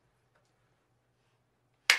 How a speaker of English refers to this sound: who wants to do the clap? Oh, clap. Do you want to clap the sound? Just do it.